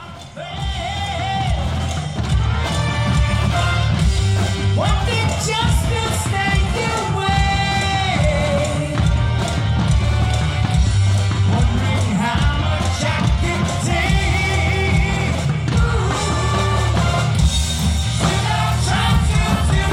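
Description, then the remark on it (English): A high school marching band plays loudly and steadily on a field with brass and rolling drums, while a crowd of parents cheers, yells and whoops in the background throughout. “the high school kids in a marching band pattern kind of storm the field and take position and join the band.”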